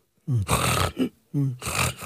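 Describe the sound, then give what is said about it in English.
A person vocally imitates heavy, choking sleep apnea snoring: two loud, raspy snorting bursts separated by a brief gasping pause, harsh, with no other talk. “Like, I mean, when I don't use my mask, I tend to snore. But it also sounds kind of terrifying because it sounds like you're dying, quite honestly.”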